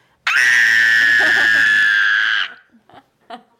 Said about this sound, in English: That scream is from the horror that I feel for this episode ending. Oh, wow, we're past crying. You were flirting with just leaving, yes. But now we've settled on a bloody murder scream.